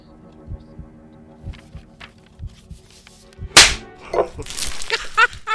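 A single loud, sharp slap cracks out midway, following a low, steady throbbing pulse, then scuffling and rustling noises trail after it.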